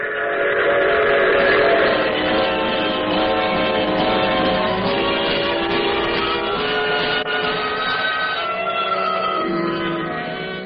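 A steam train whistle sounds in long, sustained tones over the steady rumble and clatter of a moving train, loud throughout with no talking.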